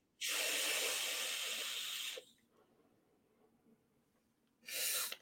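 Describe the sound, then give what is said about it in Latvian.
A long, forceful breathy hiss of vapor being exhaled from an e-cigarette, then a quiet pause and a second, shorter puff out. No one speaks. “Nu, tāds tvaika mašīna.”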